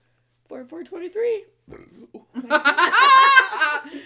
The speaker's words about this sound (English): Yeah. No, you have good burps.